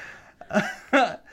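Two quick mouth noises, a voiced, buzzy mouth fart or snorting sniff, with a short pause between the bursts and no talking around them.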